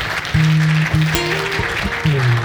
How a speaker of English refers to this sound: Somebody give God a hand clap of praise.